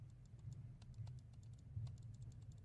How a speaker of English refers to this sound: You clicking your mouse incessantly does not make the issue go away, buddy.